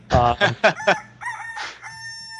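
A rooster crows loudly: a few quick, choppy bursts followed by a longer, drawn-out wavering note that trails off, with no voices present.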